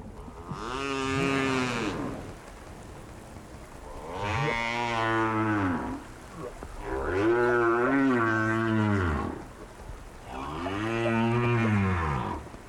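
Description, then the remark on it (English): Right whales snoring, recorded by Roger Payne: four long, deep, droning moans, each about two seconds, separated by short pauses. They are loud, resonant and rich in overtones, with no voices. “We leave you this week in the company of right whales, snoring.”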